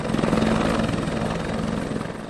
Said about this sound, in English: Okay, well, that's why the helicopter's there, ma'am. They know about it. When we got up there, you know, all the helicopters started showing up. We had LA County, LA City.